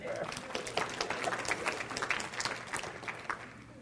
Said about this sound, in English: Give him a hand clap.